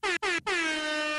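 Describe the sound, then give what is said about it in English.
A loud air horn sounds in three quick blasts, two short bursts followed by a longer sustained honk, bright and harmonic with no voices present. “That works for me. Is the air horn.”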